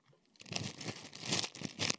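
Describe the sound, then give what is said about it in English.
Ice cubes being dropped into a plastic sandwich bag: crinkling plastic and crunchy, clattering bursts come in several uneven surges over two seconds, fairly loud, with no talking. “and it's got the warm water in, and I've got my sandwich bag, and I'm putting some ice cubes in it.”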